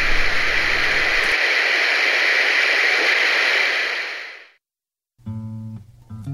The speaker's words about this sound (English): Orbital Radio. Your listening choices. Us? Or static.